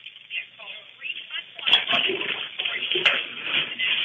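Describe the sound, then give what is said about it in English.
Water sloshes and gurgles as a bathtub drains, a steady rushing noise with a couple of sharp knocks, heard over a muffled phone line with faint voices in the background. “Okay, sir, did you remove the water from the bathtub? No, I haven't. Okay, take the moment to do that now, okay?”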